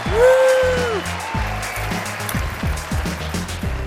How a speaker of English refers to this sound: Welcome to FinTech Insider Live, ladies and gentlemen. Give yourselves a round of applause for being here.